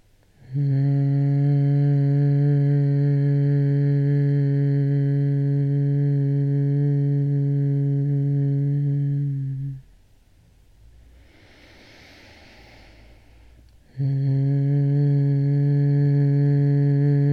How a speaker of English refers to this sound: So, finding a tone that works for you, let's start together in a few beautiful humming breaths.